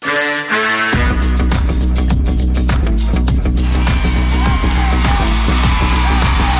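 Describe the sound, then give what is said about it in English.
A loud, sustained crowd roar at a game involving Forest Hills, with 5:52 to go and the score 49-45, with shouts and yells rising over a dense wall of noise and frequent sharp claps or bangs throughout. “You can hear the crowd.”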